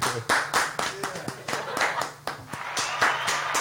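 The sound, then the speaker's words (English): A burst of applause for the show name 'Black People Talk, White People Listen', many hands clapping in a dense, crackling patter that holds steady throughout, with faint voices mixed in underneath. “Wow, Black People Talk, White People Listen. Applause.”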